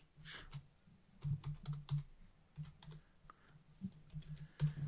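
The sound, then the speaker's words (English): Rapid, irregular typing on a computer keyboard, a steady patter of soft clicks and key taps with brief pauses, fairly quiet, with no voices. “Typing on the show.”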